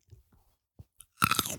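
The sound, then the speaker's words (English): Chewing of an extra crunchy grape: a few soft, scattered mouth clicks, then a loud, wet burst of crunching for about half a second, with no one talking. “Yeah, this is what it sounds like when we eat this grape.”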